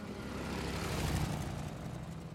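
A motorcycle engine is started and driven off, rumbling steadily in a low throaty drone with a slight rise in revs partway through, and no voices.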